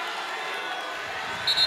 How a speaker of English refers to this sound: What's the cheering about or what happened? He just got a delay a game call, that's all. I know. What was the excitement there? You don't know? I don't know. It's a student section. They're getting on Wenger.